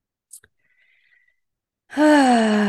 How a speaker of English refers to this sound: And I'm just regulating my nervous system by deep breathing as we move through this episode.